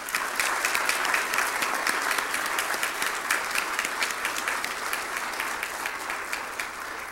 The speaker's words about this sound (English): Everyone here that's a veteran, could you stand up? Just stand up and stay standing with us. Oh, yeah. Let's just give these guys applause.